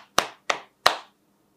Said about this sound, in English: Now I can do the clapping.